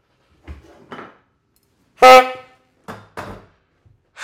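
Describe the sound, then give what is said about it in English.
A single loud, brassy horn blast lasting about half a second, with a few short clattering knocks before and after it and no talking. “Where's my horn?”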